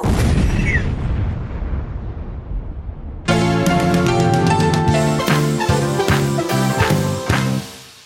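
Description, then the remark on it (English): A loud explosion sound effect, played as a quick break begins, booms and rumbles, fading over about three seconds, before bright music with punchy rhythmic hits abruptly takes over. No one speaks. “give us that good whip crack, whip crack. Explosion.”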